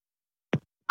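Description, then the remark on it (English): A single sneeze: a short soft intake after silence, then a loud, sharp, hissy burst right at the end, with no talking. “Bless you.”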